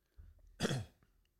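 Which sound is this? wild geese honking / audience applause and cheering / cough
cough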